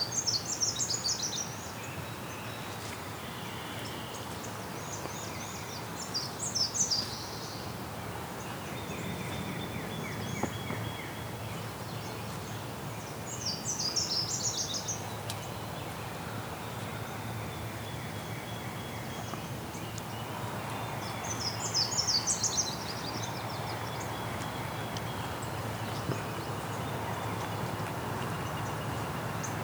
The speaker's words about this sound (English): There's our pine warbler again. It's a squirrel.